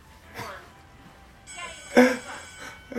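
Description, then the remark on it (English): A bright electronic phone notification bing sounds once midway through, its clear tone ringing for about a second while people talk faintly around it. “It wasn't a buzz, it was a bing.”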